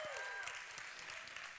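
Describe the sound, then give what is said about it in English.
A crowd claps to show who was there on Friday night, a dense, continuous patter of many hands at an even loudness, with a brief high tone fading out at the start. “How many of you were here Friday night by hand clap?”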